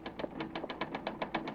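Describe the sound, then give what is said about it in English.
Typewriter typing out a news lead: a quick, steady run of about a dozen sharp mechanical key strikes, evenly spaced and fairly bright, with no voices over them. “Get that typewriter. Huh? Start pounding out a lead.”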